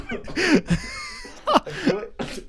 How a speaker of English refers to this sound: Sorry, I'm coughing. Jeez.